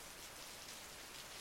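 Steady rain falls with a soft, continuous hiss, an even wash of droplets that neither swells nor fades over the brief moment, with no voices present.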